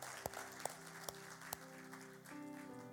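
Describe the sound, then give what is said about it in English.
Four sharp, evenly spaced hand claps from an audience giving God a hand clap ring out in a steady rhythm over sustained organ-like chords, then the clapping stops while the held tones continue. “Can we give God a hand clap for that, right?”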